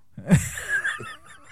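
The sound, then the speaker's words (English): A voice attempts to imitate dripping water: a low wet mouth pop, then a breathy, wavering whistle-like tone and a second softer pop, with no words spoken. “That dripping noise?”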